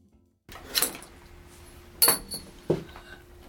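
A thrown wheelchair brake extender clatters with three sharp metallic clinks, the first and loudest hits ringing briefly, close by and with no talking.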